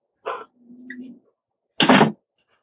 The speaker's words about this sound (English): Let me shut the door here. Hold on.